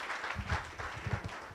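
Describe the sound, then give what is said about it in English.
A crowd at a Las Vegas Rotary Club gathering applauds to welcome a past club president, a dense, steady patter of many hands clapping at once with no single rhythm, moderately loud and without talk over it. “Big round of applause.”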